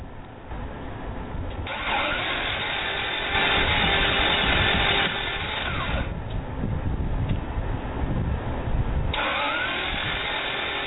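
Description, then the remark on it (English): A car engine cranks and struggles to start, grinding and sputtering in rough bursts that rise and fall over several seconds, loud, with no voices. “Is this how your car is sounding?”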